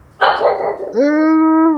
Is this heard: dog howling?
yes